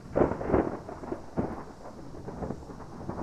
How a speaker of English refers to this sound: Well, ladies and gentlemen, a storm has just rolled in onto the ethereal plane where the homebrew pub is situated